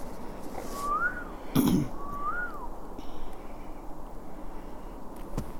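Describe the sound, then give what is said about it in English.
Two clear rising-and-falling whistled bird calls ring out about a second apart in the woods over a steady outdoor hiss, with a brief thump between them. “There's a bird again.”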